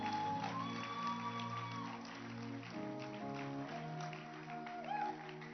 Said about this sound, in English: Oh, keep clapping.